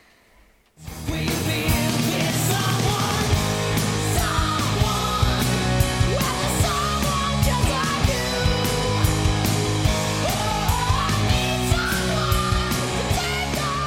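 A 1989 rock song kicks in after a brief silence, with driving drums, dense distorted guitars and a raspy vocal, staying loud and steady throughout.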